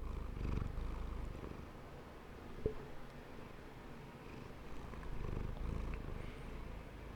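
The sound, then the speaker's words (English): A cat purrs steadily and loudly, a low rumbling drone that swells in rhythmic waves with each breath, with one brief click partway through. “Can you hear him? Yeah. The motorbike.”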